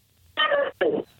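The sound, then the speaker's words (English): Two short bursts of muffled, tinny voice come through a phone line, broken up and unintelligible, with a brief dropout between them, like a call on a poor connection. “Your signal is so bad, I have no idea what it is you're saying.”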